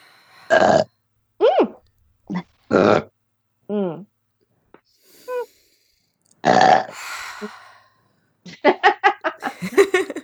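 A run of loud, close burps, several short and croaky and a couple long and rumbling, separated by brief pauses, ending in a burst of rapid giggling laughter.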